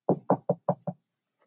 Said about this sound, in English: I wonder if they got sick of it. Oh, damn, they didn't knock back. I don't think they're in there.